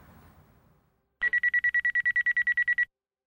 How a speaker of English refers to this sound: It was 3 a.m. when their phone broke the silence, followed by a knock at the door and the rotating amber light of an emergency vehicle raking their dark living room wall.